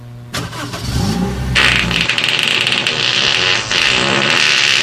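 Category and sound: vehicle, car engine starting up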